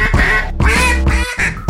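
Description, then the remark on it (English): A duck quacks loudly, three harsh, raspy quacks in quick succession, each drawn out with a nasal buzz. No one talks over them. “That's a duck.”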